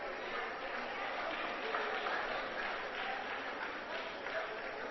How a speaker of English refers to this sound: That's a bunch of people clapping.